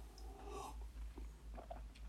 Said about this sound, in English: Now we're almost down to the last track, but before we play that, as always, one last sip